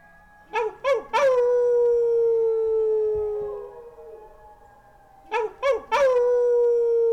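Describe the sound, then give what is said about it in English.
A group of neighborhood residents in Northern California howl together at 8 p.m., imitating wolves: short rising yips swell into a long, drawn-out wail that slowly falls, then a second round of yips and howling follows, loud. “But every day at 8 p.m. in my neighborhood in Northern California, I join forces with my community to howl about it.”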